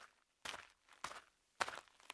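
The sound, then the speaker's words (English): Three crunching footsteps through dry brush in a canyon as it gets dark, at a slow, steady pace, each a short rustling crackle, quiet, with near silence between steps and no voices. “As I crunched through the brush, I heard footsteps walking behind me.”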